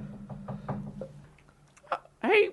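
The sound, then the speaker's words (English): Four quick, evenly spaced knocks on a door, moderately loud, followed by a short pause and then a brief burst of a voice at the end. “I think someone's knocking at the door.”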